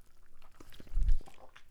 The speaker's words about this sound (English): Now back to what I was saying as I take a sip of this Pepsi real quick.